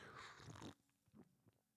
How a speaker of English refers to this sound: I drink today something I fell in love with. It's 100% cacao. It's delicious. Let me take a sip.